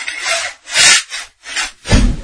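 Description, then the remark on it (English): A heavy vault door creaks open on its hinges in four rough, grating bursts with short pauses between, the last ending in a deep low thud. The sound is loud and there is no talking. “We're going to open this vault door here and see what kind of archives we can dig out from the Sean Tesher Show Ear Candy Vault.”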